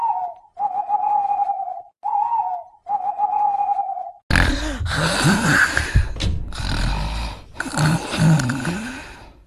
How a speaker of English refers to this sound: She snores so loud.